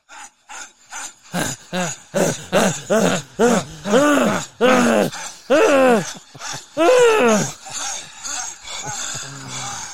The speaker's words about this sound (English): So should we do a little bit of breathing just to centre ourselves? A great idea.